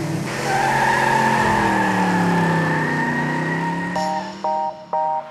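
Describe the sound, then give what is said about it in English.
A self-driving robotic car, driving itself with no human driver and using sensors to detect nearby objects, drives past with a steady, slowly bending whine, loud, then three short electronic beeps sound at the end. “They're robotic vehicles that can drive all by themselves without any humans driving them.”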